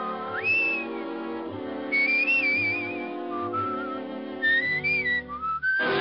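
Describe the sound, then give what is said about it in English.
A clear, close whistled melody rises and glides through several phrases, carried over a steady instrumental accompaniment with sustained chords throughout. “Its theme, Leave It to Love, was whistled by … at the beginning of each episode”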